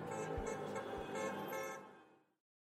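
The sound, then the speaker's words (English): A traffic sound effect: dense traffic noise with several car horns honking over one another, loud, holding steady for about two seconds before cutting off abruptly. No one speaks. “That traffic seems so familiar.”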